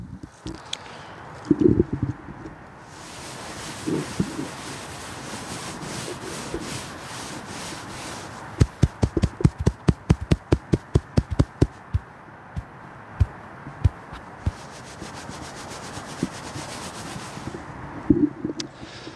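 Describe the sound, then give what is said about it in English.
Hands rub soft moss with a steady brushy swishing, then slap it in a quick run of sharp, regular pats before returning to rubbing with a few scattered slaps. No one speaks. “We'll try and tune up the mics and have you guys listen to some rubbing and slapping. Us, you know, fondling some moss.”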